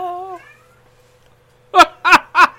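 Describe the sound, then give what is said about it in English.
A cat named Poe lets out three short, loud meows in quick succession, following a brief faint tonal cry and a moment of near silence. “Was that a real meow in the background?”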